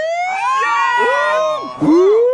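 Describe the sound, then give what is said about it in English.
A loud, wailing siren sound imitated by a voice, with rising and falling glides that swoop up sharply again near the end, heard alone. “the siren goes.”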